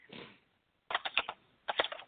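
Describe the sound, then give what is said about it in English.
Two quick bursts of clacky keystrokes as someone types fast on a mechanical keyboard, fairly loud, after a brief rustle at the start. Each burst holds several rapid clicks, separated by a short pause; no one speaks. “You and your mechanical keyboard.”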